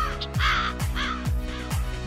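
A raven croaks four times in a steady rhythm, each call a harsh, throaty note that drops in pitch, fairly loud with no other sounds around it.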